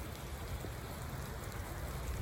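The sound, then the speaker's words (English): Steady, dense rain patters outdoors on someone sitting in a camping chair, in a continuous wash of noise with a low rumbling undertone and no voices, holding an even, moderate loudness throughout. “Just sitting here in the rain.”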